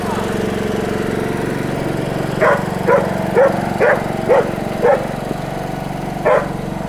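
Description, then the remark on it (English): A man runs a lawnmower; its engine drones steadily and loudly throughout, while a dog barks about seven times in a loose series over the steady motor hum. “He was running a lawnmower when we got there.”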